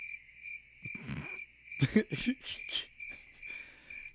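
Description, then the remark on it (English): Steady, high-pitched cricket chirping fills the background, a continuous insect trill with a few louder rustles and thumps breaking through, but no talking. “Likes the crickets. I like the crickets.”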